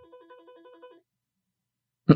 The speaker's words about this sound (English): Is that the phone? Yeah, it's Tommy's desk phone.